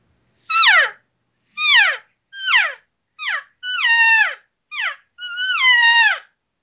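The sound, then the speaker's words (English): Seven deep elk cow calls blown on a diaphragm call: nasal, whiny mews that slide downward in pitch, loud and separated by short pauses, with the last few drawn out longer. No talking. “So this is what a deeper cow sounds like.”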